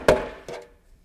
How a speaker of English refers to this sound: and all of a sudden someone knocks on the door.